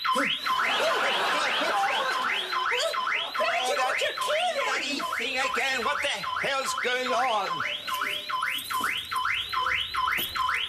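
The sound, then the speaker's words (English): A man's car alarm wails with rapid, repeating rising whoops, loud and steady throughout, while he speaks briefly over it partway through; a cat sitting on the car's front bonnet is said to have set it off. “Ironically, he's able to get to sleep just for a short moment, right before his car alarm goes off again.”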